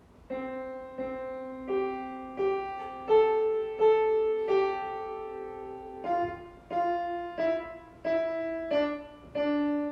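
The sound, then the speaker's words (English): The alphabet song melody played as a slow run of sustained, reedy instrumental notes, each held and evenly spaced, rising in pairs then stepping back down, with no voices. “You're all wrong. It's A, B, C, D, E, F, G. How many of you learned your alphabet by singing it?”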